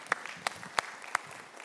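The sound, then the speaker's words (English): Sparse, quiet clapping from the Citizens Church audience, who are clapping for themselves: four sharp, evenly spaced claps stand out over a faint patter of softer handclaps, with no voices. “Y'all can clap for yourselves.”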